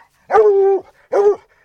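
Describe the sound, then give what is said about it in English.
Walker Red Tick hounds baying after picking up the fresh scent of a cat during a hunt: two loud, drawn-out, tonal barks, the first longer than the second, with a brief pause between them and no voices. “Within minutes, the Walker Red Tick hounds have picked up fresh scent.”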